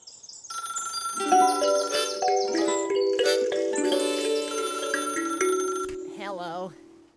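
A bright, farm-flavored phone ringtone plays: a layered, jingly melody of chiming, bell-like tones runs for several seconds, then a wavering animal-like call closes it out.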